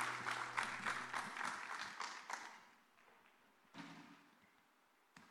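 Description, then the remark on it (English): A church audience claps for the Lord in a dense burst of applause as people go back to their seats. The applause fades out after a couple of seconds over a low steady hum, followed by a few scattered soft thumps. “Give the Lord a clap as you go back to your seat.”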